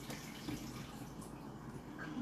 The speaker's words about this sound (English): I will wash my water bottle.